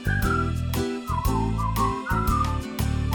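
A bright whistled melody glides over a full, steady instrumental backing with a thumping bass and regular percussive beats, the tune weaving up and down throughout.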